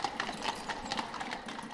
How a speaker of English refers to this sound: Hart was driven by horse carriage to a Turkish bath, and after a nap of a couple hours, was taken to his agent's home nearby.